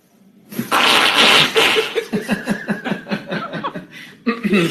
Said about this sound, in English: I don't think they're real farts. I think what's happening, I think they're putting the fart noise in when the cracking's happening.